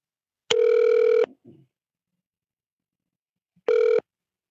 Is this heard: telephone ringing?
yes